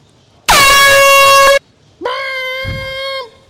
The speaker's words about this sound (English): Why can't my alarm be quieter than my ringtone? That is bullshit.